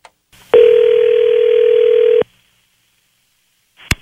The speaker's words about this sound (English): There's a phone number that goes with this story. Let's give it a call and see what happens here.